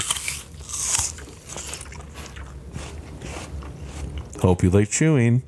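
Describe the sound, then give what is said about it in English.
A crisp Rave apple is bitten with a sharp, crunchy snap, then chewed in wet, crackling bursts, followed by a short voiced reaction from the eater. “Hope you like chewing sounds.”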